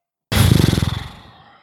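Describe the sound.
A person imitates a rearing horse with a loud, raspy whinny that starts abruptly, then breaks into a rapid fluttering trill that fades out over about a second.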